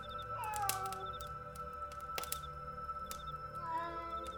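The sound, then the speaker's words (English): A gray cat meows twice, once near the start and again near the end, moderately loud, over a steady background hum with a few sharp clicks in between. “A gray cat curled on a small rug.”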